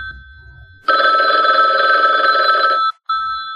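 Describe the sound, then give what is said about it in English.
A loud telephone bell rings in a rapid metallic trill for about two seconds, stops briefly, then starts ringing again at the end. No one speaks. “I gotta hold on, let me take this phone call.”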